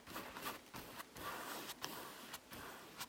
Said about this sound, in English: This is the sound of her paintbrush.